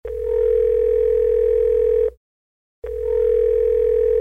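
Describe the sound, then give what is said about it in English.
A steady, loud telephone tone for an outgoing call placed to a man in Tanzania sounds for about two seconds, breaks off briefly into silence, then returns unchanged, with no one speaking. “To find out more about what it's like to be a gay man in Tanzania, we are going to phone”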